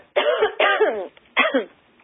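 Three forceful coughs with a throaty, rasping edge, the first two running nearly together and the third after a short pause, with no talking.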